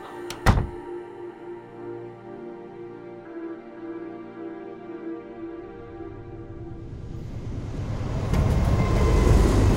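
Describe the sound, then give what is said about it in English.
A sharp metallic clunk, then a steady mechanical drone as a train gets going, swelling into a loud, rushing rumble of wheels on the rails toward the end. No voices. “I'll climb onto the train and make my way to the locomotive.”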